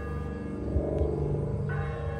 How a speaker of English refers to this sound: The church bells began to ring. It was unexpected, as if heaven had queued up the soundtrack of my youth to match my nostalgic trip back to childhood.